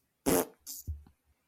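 A brief coughing fit: a loud, harsh, breathy cough followed by a second rasping burst and a lower, throaty rumble, all within about a second, with no talking.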